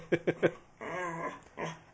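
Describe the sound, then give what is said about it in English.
A dog gives three quick, sharp yips, then lets out a drawn-out whining whimper mixed with low growly grumbles, with another short whine toward the end. “You don't even suffer from black dog syndrome.”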